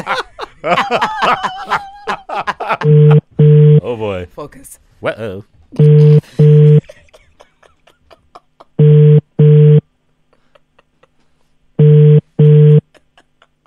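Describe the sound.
Brief chatter and a chuckle, then an outgoing phone call rings out: steady double-pulse ringing tones, buzzy and mid-pitched, repeat four times with silent gaps between them.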